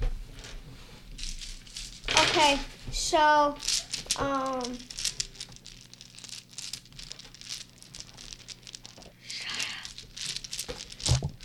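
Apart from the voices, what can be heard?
dice rattling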